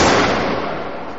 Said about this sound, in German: Ein Schuss!